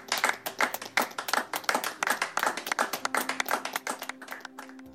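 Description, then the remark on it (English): A crowd of men claps together in a fast, steady rhythm as a clap offering to God. Many sharp hand claps merge into a loud, lively ovation that carries on throughout, with no talking. “Abba Father, all men in the house stand in awe of your wonders and celebrate you with our clap offerings this day, in Jesus' name.”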